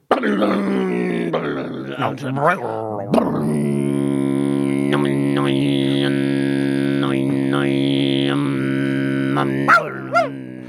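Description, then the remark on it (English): A voice imitates a didgeridoo, holding a deep, buzzing, steady drone for about ten seconds, with wobbling overtones and brief whooping rises and yelps on top. It is fairly loud, with no words. “You sound like a didgeridoo.”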